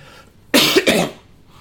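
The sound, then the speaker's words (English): A stifled cough right up close to the microphone, two quick muffled bursts back to back, loud and breathy against an otherwise quiet background with no talking. “It was the god of the universe trying to not cough into the mic.”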